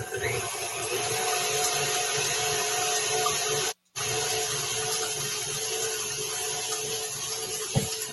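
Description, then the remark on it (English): A steady, high-pitched electric mixer whirs continuously on high speed, beating eggs, with a brief cut-out near the middle and a small clunk toward the end. No one speaks. “So while the eggs are beating, 45 seconds to a minute before the sugar into the egg mixture is beating.”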